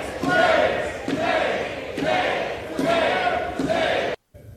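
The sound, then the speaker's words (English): A large group of legislators on the House floor chants "shame" over and over after a vote, in a steady, loud rhythm, about one shout per second, before cutting off abruptly. “So what happens is they continue to scream shame, shame, shame, shame, shame.”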